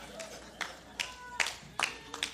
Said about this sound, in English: Thank you for the golf clap, the slow clap. No, I'm just messing.